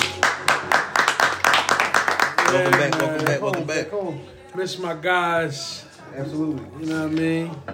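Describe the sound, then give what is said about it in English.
A quick run of about ten sharp, loud hand claps in a steady rhythm lasts a couple of seconds, then gives way to people talking. “Can we get a hand clap to that?”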